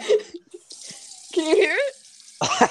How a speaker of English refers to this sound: Can you hear it? Bro, that sounds like so much juice. Do you have a cap that spits out juice? That's crazy. Wait, you're drinking tap water straight from the tap? This is dirty earth juice.